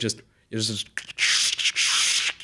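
A couple of short voiced bursts give way to a harsh, crackling wash of white noise, a steady tearing, scraping hiss that runs loud for about a second before cutting off.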